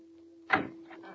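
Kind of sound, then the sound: household object, door being opened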